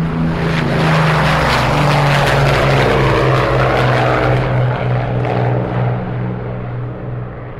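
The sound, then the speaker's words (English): An Avro Lancaster bomber powered by four Rolls-Royce Merlin engines flies past overhead: a loud, deep, throbbing propeller drone with a rough harmonic growl that holds steady, then begins to ease and fade at the end. “The unmistakable sound there of an Avro Lancaster powered by four Rolls-Royce Merlin engines flying past.”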